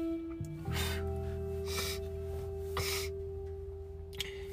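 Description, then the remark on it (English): Several sharp, breathy sniffs repeat at a loose, steady pace over a constant low electrical hum with no talking. “I'm steady sniffing.”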